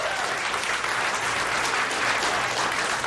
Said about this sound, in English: And now here they are clapping for themselves.